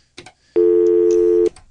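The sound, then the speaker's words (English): A loud, steady telephone line tone holds for about a second, preceded by a couple of brief clicks, heard alone with no voices, as another caller's call comes in to a radio sports call-in. “Hold that thought. We got another call here.”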